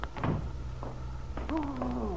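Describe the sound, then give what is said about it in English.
A back door opens into a kitchen with a few soft knocks and clicks, followed by a drawn-out, slightly falling creak of the hinges. It is moderately loud, with a low steady hum underneath. “A moment later, he opened the back door, entering the warmth and fragrance of his mother's tidy kitchen.”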